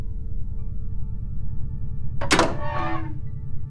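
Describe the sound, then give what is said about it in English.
A door being unbolted and opened after its override was removed: a single heavy mechanical clunk as the bolt releases, followed by a short hissing slide as it opens, all over a steady low machine hum. “It took me a while to figure out how to get the door unbolted, even once the override was gone.”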